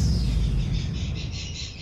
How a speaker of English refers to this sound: Hello again, and it was cats a couple of weeks ago, now it's birds that start the program.